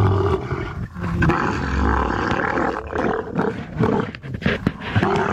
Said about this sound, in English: We came across camel mating noises, which were very nightmarish, so we were, you know, playing camel mating noises, right?